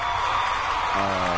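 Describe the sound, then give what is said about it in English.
A burst of crowd applause, steady and dense, with a few whoops and a tonal hum joining partway through. “So like, you guys, warm round of applause.”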